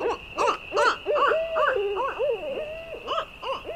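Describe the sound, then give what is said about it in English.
A barred owl calls in a rapid run of about a dozen rising-and-falling hoots, fairly loud, over a steady thin high whine in the background. “On top of all that, the northern spotted owl is facing another threat, one that looks and sounds quite similar.”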